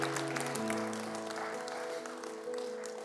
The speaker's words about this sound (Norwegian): Gi han en skikkelig applaus. Det fantastisk å høre.